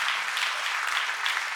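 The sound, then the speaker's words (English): A church audience applauds after a closing prayer, with a steady, dense wash of many hands clapping at once, sustained evenly throughout with no voices rising above it. “Can you give a good clap for that?”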